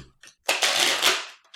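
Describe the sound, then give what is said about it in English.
A deck of playing cards riffled in one quick shuffle, a dense fluttering burst of about a second preceded by a few light taps, with no voices. “How about you shuffle those and I'll allot your cards?”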